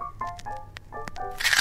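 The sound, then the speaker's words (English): A crunchy bite into one of Hagrid's rock cakes: several sharp cracks in quick succession, fairly loud, ending in a louder gritty crunch. “Go on, have a bite. They're crunchy.”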